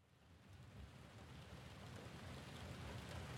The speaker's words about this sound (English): It was a dark and stormy night. The wind and the rain.